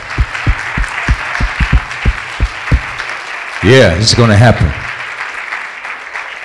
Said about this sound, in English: Well, let's clap our hands for that.